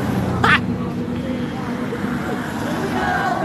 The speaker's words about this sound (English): Listen to the cars passing.